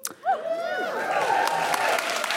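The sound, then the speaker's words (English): A crowd breaks into sustained applause, steady dense clapping mixed with rising whoops and cheering voices, loud for a couple of seconds. “It's not come out yet, so the applause is probably previous, but still, I know it's made.”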